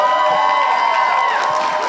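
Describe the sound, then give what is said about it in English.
An audience cheers loudly and steadily for two seconds to vote for contestant number one in an on-stage contest, a dense wash of overlapping shouts and high whoops with no pauses or distinct voices standing out. “So what we're going to do is have the audience cheer.”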